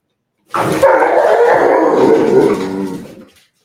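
Dogs let out a loud howl that begins with a sharp bark-like burst, holds steady for a couple of seconds, then fades away. No one speaks.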